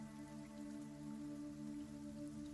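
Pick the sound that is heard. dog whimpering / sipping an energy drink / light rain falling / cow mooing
light rain falling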